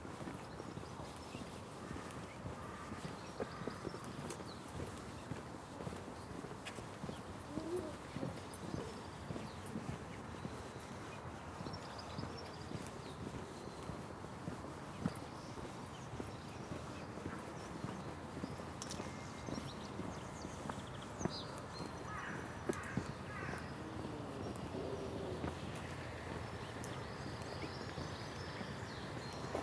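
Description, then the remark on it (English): Steady footsteps crunch along outdoors at a regular walking pace, fairly loud, continuing throughout with faint birdsong in the background and no talking. “Walking maps a fantastical island.”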